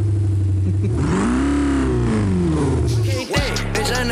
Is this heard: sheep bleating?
no